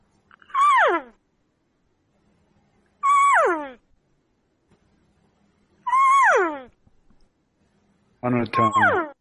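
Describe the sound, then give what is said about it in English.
Four elk cow calls, each a short, high mewing note that slides downward in pitch, spaced a few seconds apart with quiet between; the last call sounds rougher and more broken up. “When you're using those cow calls, it can't be.”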